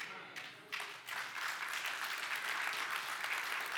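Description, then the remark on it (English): An audience at a sermon about Jesus breaks into applause at a speaker's point, building quickly from a few scattered claps into a steady, dense patter of many hands that holds at a moderate level to the end. “I feel like that point was better than you clapped, but that's all right.”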